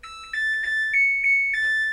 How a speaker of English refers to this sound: So this right here is my washing machine. And it makes this jingle that sounds like...